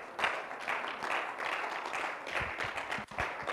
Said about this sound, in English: Please, can we clap our hands as we invite Pastor Sonny? Please, you can come over, sir.